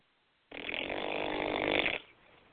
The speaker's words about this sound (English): Who's snoring? Do you guys hear snoring?